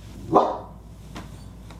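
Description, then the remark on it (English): A single sharp dog bark rings out near the start, followed by quieter fainter yips or thumps, with no one speaking. A dog barking at a FedEx delivery driver during a recording at home. “If you want to know the problems of recording at home, it's my dog barking at the FedEx driver while I'm trying to record a sermon.”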